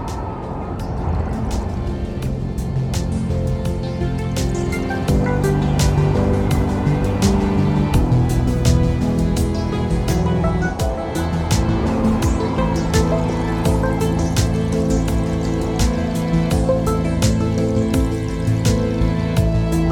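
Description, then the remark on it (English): A storm roars steadily with heavy rain, sharp crackling drops scattered across a dense wash of noise and a deep, sustained low rumble beneath, loud and unbroken throughout with no voices. “I sink to my knees, sink into the mud with the storm roaring around me, and sob uncontrollably.”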